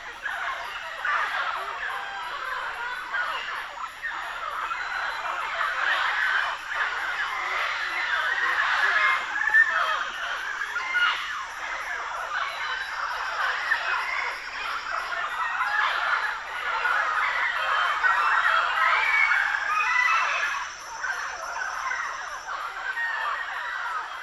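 A large flock of mealy Amazon parrots, feeding on fruit in the canopy of a large tree, fills the air with dense, continuous squawking and chattering overhead, a loud, overlapping cacophony of harsh calls with no pauses throughout.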